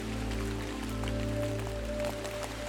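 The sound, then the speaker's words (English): Steady rain falls with a soft, continuous patter, scattered sharper drops ticking through it, over a low, constant humming drone. No voices. “So when I look at the weather forecast for today, I say, let it rain.”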